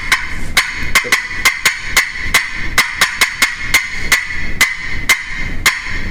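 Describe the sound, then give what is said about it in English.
A turkey call sounds a hen's cutting: a fast, uneven string of about sixteen sharp, loud clucks, with no talking over it. “cutting to me is when a hen's doing that. I mean, in the woods, that's a turkey hunter's bread and butter call.”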